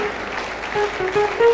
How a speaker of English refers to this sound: They are still coming. Keep clapping. We will wait for you. We celebrate you. We welcome you into the fold.